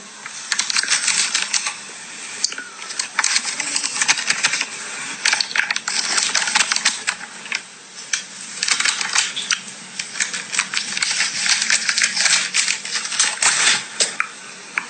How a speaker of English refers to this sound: Rustling paper, is it? Listen. Wait. I love the flutters.